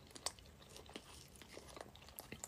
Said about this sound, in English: I don't like hearing people chew like mad loud. I don't like it